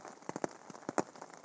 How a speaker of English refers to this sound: Good morning. It's 4 a.m. and you're listening to the rain in Pennsylvania.